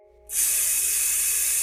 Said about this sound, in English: The next step of the process is to seal the vat and spray it down with a cleansing solution.